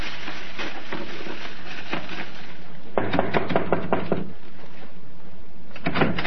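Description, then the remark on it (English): Quick raps on a door, a fairly loud burst of about six knocks, preceded by softer scattered tapping and followed by another short knock near the end. No one speaks. “As if you were waiting for someone to knock at your door.”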